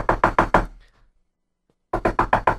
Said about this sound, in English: Yes, Heiliger Rebbe, I will knock on the door.